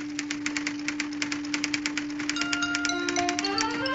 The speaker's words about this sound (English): So she talks, and the typewriter types that? What she says.